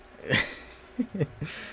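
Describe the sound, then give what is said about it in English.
A child trying to burp, with a breathy, gulping push followed by three quick little croaking attempts, fairly quiet. “There's a microphone right here, so I'm gonna leave all this in so people can hear you trying to burp.”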